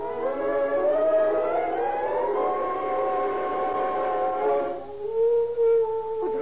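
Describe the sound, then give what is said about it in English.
A dog howls in a long, drawn-out wail that slowly rises in pitch and holds, then breaks off and resumes on a lower, steadier note, loud and alone without talk. “A dog howling.”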